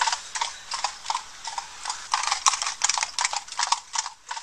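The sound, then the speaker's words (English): Horse hooves clip-clop at a steady trotting rhythm as Georg Reticus rides his saddled horse over 600 kilometers to Poland, a continuous series of crisp knocks heard on their own with no voices. “Eventually, one of his readers, Georg Reticus, was so taken with what Copernicus had proposed that he saddled his horse and rode over 600 kilometers to Poland.”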